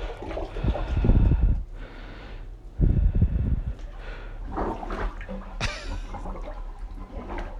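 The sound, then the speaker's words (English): A plunger works a clogged toilet full of water with wet, gurgling sucks and splashes, two heavy strokes followed by softer, irregular churning of water, with no talking. “This plunging, this is disgusting.”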